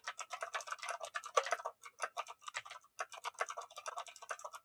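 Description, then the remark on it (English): Rapid, steady clatter of typing on a computer keyboard, dense clicking keystrokes in quick bursts with brief pauses, fairly quiet, with no voices. “Can you guys hear my chat, my typing?”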